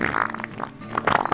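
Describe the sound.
A voice imitates a wet fart with a close, fairly loud, buzzy raspberry that sputters and bubbles for about a second, dipping briefly midway before flaring up again. No words are spoken.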